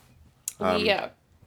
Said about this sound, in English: I just burped.